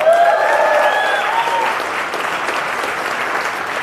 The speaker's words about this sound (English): You didn't let me finish Fauci Unmasked with Michael Knowles, so there's no need to clap. Absolutely no need to clap.